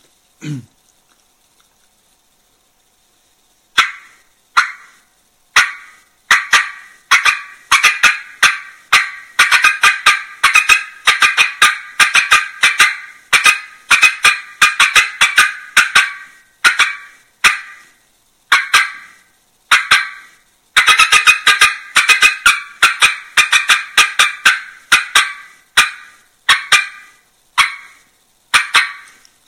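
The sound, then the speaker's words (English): A hen turkey call sequence played on a game call: loud yelps that start out spaced apart, then quicken into rapid, excited bursts, with no talking. “So I'm going to picture a turkey here walking, coming to me, and then stopping and getting excited.”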